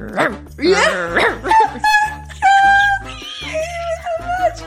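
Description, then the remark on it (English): A man's voice imitates a dog, with a series of loud barks and growls that slide in pitch, followed by drawn-out whining tones. “Then he starts legit growling at me and barking like a dog.”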